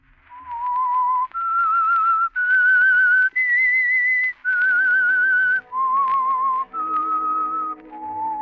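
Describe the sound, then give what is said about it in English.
The whistled theme tune of the radio show The Whistler: a lone whistler carries a slow melody of eight long, sustained notes that climb then fall, with a low instrumental backing joining under the second half. “And now, back to the Whistler.”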